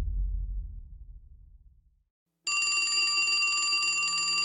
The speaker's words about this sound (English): The phone in the grimy office rang.